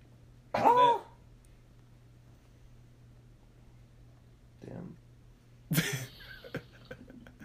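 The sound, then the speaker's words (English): A person coughs and clears their throat in three separate harsh bursts spread over several seconds, with a faint steady hum in the background. “Don't cough.”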